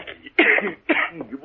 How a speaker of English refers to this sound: Hey, you got an awful bad cough there